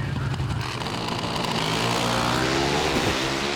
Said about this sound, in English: Once again, courtesy of Fox Sports and the NHRA, here's Brian Lones with the winning run in the call in Pro Stock Motorcycle. Let's watch. Final round. Pro Stock Motorcycle, U.S. Nationals 2020.